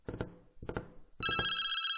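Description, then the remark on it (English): A telephone rings in short bursts: two brief trills, then a longer, louder ring with bright steady tones, clear with no one talking. “Were you just sitting by the phone?”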